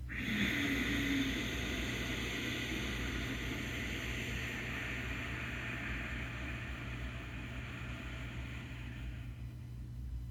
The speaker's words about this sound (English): We're breathing in through the nose and exhaling to make that sound in the throat. Inhale into the low belly. Inhale into the chest. Inhale above the collarbones. And then exhale with the sound.